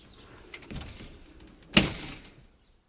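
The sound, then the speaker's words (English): A door slides or swings closed with a brief scraping movement, then shuts with one sharp, fairly loud thunk that rings out briefly before quiet. No one speaks. “I'm going to leave here kind of pissed again, because I'm fixing to shut the door.”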